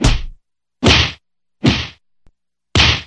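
Four loud slaps crack out one after another at uneven intervals, each a sharp smack with a short fizzing tail, with a tiny tick just before the last one. No one speaks.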